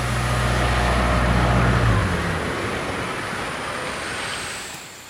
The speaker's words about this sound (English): I don't even know what that was. Whatever that big engine was that just turned off. I have no fucking clue. That's weird.